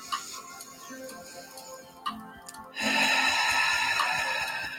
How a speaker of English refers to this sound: And breathing through those feelings. Taking a deep breath in.